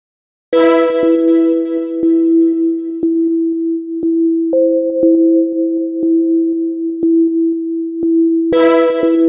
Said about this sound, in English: To illustrate how simple it is, let me play you the bell and the string pad sound that I ended up using. Here we go.